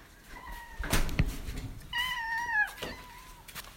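Mazinga the cat, waiting to be fed, meows a few times: a faint, thin call first, then a louder, drawn-out meow that slides downward in pitch, with a short rustling thump between them and no talking.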